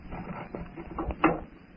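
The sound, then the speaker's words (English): The door of a hut is pushed shut: a few short wooden knocks and clacks, the loudest one past the middle, with faint shuffling noise between them and no voices. “I'll close the door.”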